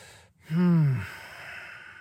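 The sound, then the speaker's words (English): A single deep breath, a soft intake followed by a long, audible exhale that drops in pitch like a sigh, with no talking. “So I hope you can take this and just dwell on it and think about the next time you take a breath. Maybe it's right now.”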